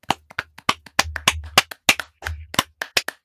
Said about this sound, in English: Yeah. Can we actually just get a little round of applause for this?